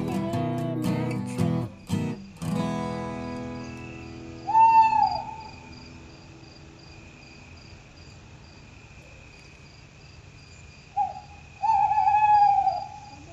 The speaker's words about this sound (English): we'll hear his hoot. We'll hear his call. One of these days, look up and see. Oh, wise old owl, sitting in a tree.